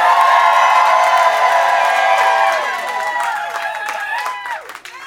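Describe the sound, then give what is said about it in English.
A loud crowd cheers and whoops to vote a contestant into the second round, with a dense wash of voices and high rising shouts that gradually thin out over a few seconds. “If you want to see Mary Devin Dupuis in the second round, make some noise.”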